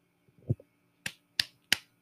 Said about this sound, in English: Clap when you're ready.